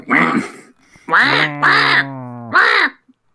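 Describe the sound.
Four loud, nasal duck quacks, the first drawn out and the rest in a quick, uneven burst, with a brief pause partway through and no talking.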